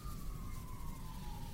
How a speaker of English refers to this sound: that siren means that it's the end of another episode of the Shop Notes podcast